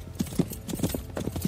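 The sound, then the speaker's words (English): Rapid, rhythmic hoofbeats of a horse cantering on firm ground toward a jump fence, with a steady three-beat clip-clop pattern over a short stretch. “But you can adjust your horse to make him go for a bigger stride or a shorter stride.”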